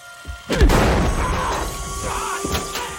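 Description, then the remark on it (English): A single loud gunshot cracks out in a drama scene as a gun barrel is knocked aside and the shot hits a man in the shoulder, followed by a heavy booming decay that lingers for seconds, with a fainter sharp knock near the end. No one speaks. “He does shoot, and it shoots one of his mates to the shoulder.”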